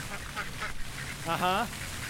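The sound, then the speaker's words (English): A duck quacks with a few nasal, raspy calls, the loudest burst near the end, over a steady hiss of background noise like light rain or wind. “Hey, ducks. What do you guys love the most about your jobs?”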